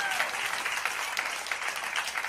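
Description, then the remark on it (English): An audience claps steadily, a dense wash of many hands with no pauses and even loudness throughout, a bright crackling texture with no voices rising above it. “Come on, somebody can clap like the Lord just gave them a revelation.”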